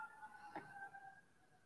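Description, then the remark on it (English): A faint siren wails in steady drawn-out tones, heard alone against quiet background hiss through an open window on a hot day of about 100 degrees. “Matt's always got the sirens going.”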